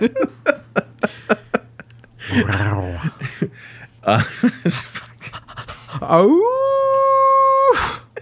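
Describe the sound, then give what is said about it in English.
A person pants and huffs rhythmically, then lets out a long rising, sustained howl imitating a cartoon wolf, loud, ending abruptly with a short burst. “You can't go cartoon wolf.”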